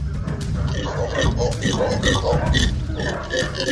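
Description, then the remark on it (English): Howler monkeys roar in a loud, continuous chorus, their deep, guttural howls overlapping and rising and falling over a dense, hissing wash of background noise, howling at a person standing under their tree. “The howler monkeys weren't just howling for no reason.”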